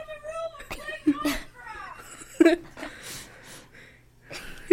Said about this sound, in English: Did you just sniff the mic?